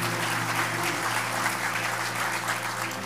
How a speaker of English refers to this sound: And I haven't even welcomed Cape Coral, who is with us live. Cape, I'm so sorry. Everybody give Cape a big cheer.